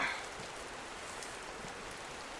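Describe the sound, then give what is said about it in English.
Steady rain patters and splashes onto a laptop, a dense hiss of tiny drops with a slightly louder burst at the very start, no voices. “You are getting some splashes there on your laptop.”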